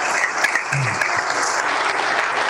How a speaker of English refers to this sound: Let's give them a great big round of applause.